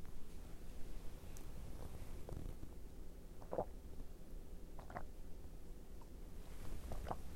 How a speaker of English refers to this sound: Sorry, that story warranted a sip of coffee.